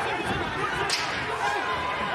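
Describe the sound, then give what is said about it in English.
Bodies slam onto a wrestling ring mat with one sharp impact about midway, over a constant loud arena crowd roar and indistinct voices. “Watch out, bodies flying everywhere now.”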